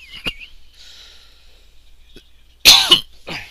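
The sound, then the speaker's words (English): A single loud cough bursts out after a faint click and near-silence, followed by a softer breathy sound as it trails off. “No cough button again.”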